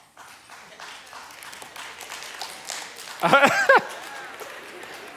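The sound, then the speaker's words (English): A crowd claps and murmurs at moderate volume throughout, with scattered hand claps blending into a steady wash of applause during a sermon, then a single voice briefly calls out over it near the end. “Clapping because it hurts.”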